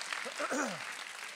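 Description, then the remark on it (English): Steady church audience applause for the Zoe Youth group's Friday night meeting fills the whole moment, a dense wash of clapping with a brief vocal whoop or cheer rising and falling over it. “Come on, clap for Zoe Youth this Friday night.”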